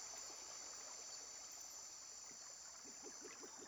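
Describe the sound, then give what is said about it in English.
Coyote Creek runs steadily, its continuous watery rush and trickle filling the scene, with a constant high-pitched drone above it and a few faint short calls near the end. “Do I hear running water? It's Coyote Creek.”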